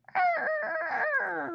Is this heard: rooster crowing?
yes